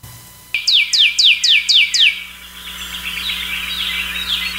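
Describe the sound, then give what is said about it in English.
A grackle, a shiny blackbird, calls with six quick, sharply descending chirps in a steady run, then fades into a softer, buzzy chatter. No one speaks. “Is it a grackle? They make a sound like that right there.”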